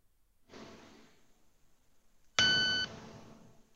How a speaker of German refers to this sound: Das habe ich jetzt gehört. Das hat einfach nur einmal laut gepiept. Ja, wahrscheinlich war das irgendein besonderes Piepen.